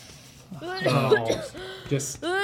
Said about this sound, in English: Okay, that's a lot. She's just coughing on you